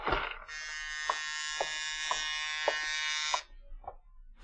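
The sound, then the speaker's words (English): A buzzer-style doorbell rings in one long, harsh, steady electric buzz lasting about three seconds, rich in overtones, then cuts off abruptly, leaving a few faint clicks. “Early that evening, you're sitting at your desk examining the diamonds when the doorbell rings.”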